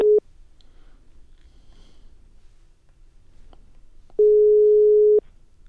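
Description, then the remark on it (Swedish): A telephone ringback tone on an outgoing call to IK Oskarshamn shortly before a match: a brief beep at the start, a quiet pause, then one long steady tone lasting about a second, clear with no talking. “Vi ringer ju så tätt in på match.”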